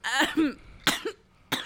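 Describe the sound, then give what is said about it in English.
Three harsh coughs from one person, the first a longer rattling double hack, followed by two sharp separate bursts spaced about half a second apart, no talking. “Wait, I gotta stop coughing so I can burp.”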